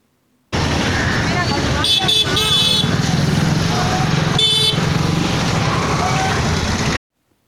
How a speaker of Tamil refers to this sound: பிரம்மாண்டமான என்ஏசி போஸ் சாலையில் இரு புறங்களும் மக்கள் மற்றும் வண்டிகள் இரைச்சல் சத்தத்தின்